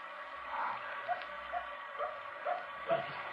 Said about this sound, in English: There's that dog again. Don't you hear it? Somebody's out there. There might be a house nearby. Maybe it's barking to be let in. It senses somebody. There's something out there. There's somebody. That's why it's barking.